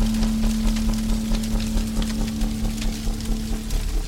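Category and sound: nature, rain pelting down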